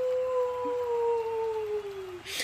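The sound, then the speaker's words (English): A single long, distant howl holds a steady, slightly falling pitch for about two seconds, faint and smooth, with no voices, ending with a brief burst of hiss. “I think we hear a howling in the distance as everyone looks at the makeshift entrance ramp.”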